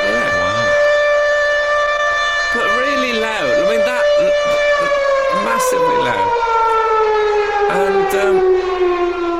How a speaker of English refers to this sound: It turns out that it's the midday siren to let the people of Castle Moron know that it's midday.